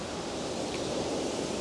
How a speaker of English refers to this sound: The waterfall is going strong today.